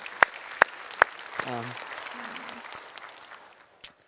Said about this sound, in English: but we want to clap for you. If you are not new anymore, if you've been here more than five times, we're not clapping for you anymore. You've had your time. This is for people who are new and they're welcome back, okay? So we want to welcome them.